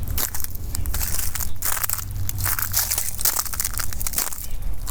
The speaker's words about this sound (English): The weather has given us a fresh coat of snow and ice that covers the trails and crunches as we walk.